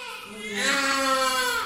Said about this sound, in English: At a maternity hospital in western Kyiv, newborn baby cries echo across the long hallways, with portraits of newborns hanging on the walls.